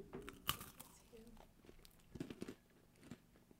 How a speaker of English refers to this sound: I was gonna say, it sounds like you're just chewing.